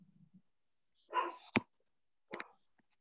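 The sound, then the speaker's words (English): A dog barks a few times in short, sharp bursts, the first bark rough and loud, the next one a moment later a bit softer, with a low growl at the very start. “Sorry, my dog is barking.”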